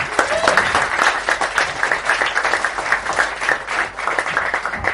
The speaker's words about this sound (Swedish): Kan vi skicka in en applåd till dasset? Tror han hör det.